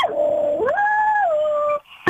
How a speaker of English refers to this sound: Oh, my dog's joining in.